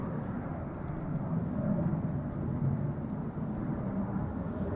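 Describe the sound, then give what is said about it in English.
An airplane passes overhead, a steady, deep rumbling roar that holds at a fairly even loudness throughout, with no voices over it. “Damn, we got a plane passing by.”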